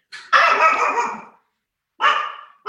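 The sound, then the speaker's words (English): The dog Monkey barks at the gate in short, loud bursts: one long rough bark, a pause, then another bark and the start of a third, with no talking. “Guys, as you can hear, that is Monkey in the background.”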